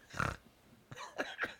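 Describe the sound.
A voice imitates a pig, giving a loud snorting grunt followed by a few shorter, rapid snorts, with no talking.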